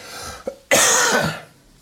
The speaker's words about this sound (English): Now I've got this cough that probably won't go away for like 6 years. And even right now, I feel like I need to cough. I'm going to do it.